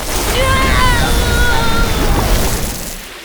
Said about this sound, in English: Oops. That was a bit stronger than I wanted. Wow. That was really impressive. I didn't mean show them your power on me! Sorry, Leo. I just meant to squirt a little water on you.